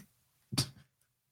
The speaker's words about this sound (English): I think I heard a dog bark there.